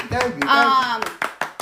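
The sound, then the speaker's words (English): A few slow, light hand claps, evenly spaced, follow a stretch of someone speaking, forming a brief, polite golf clap. “But, oh, I get the golf clap.”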